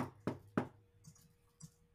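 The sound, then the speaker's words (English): Three sharp knocks on a door from the inside in quick succession, fairly loud, followed by a couple of faint, softer taps and quiet background noise. “Is that me knocking, Keeper?”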